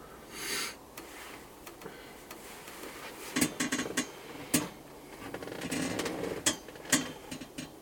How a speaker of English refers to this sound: This chair's clinking, isn't it? That chair's older than your grandpa. 80 years? I wouldn't be surprised, dude. Did you see it? It's pretty metal.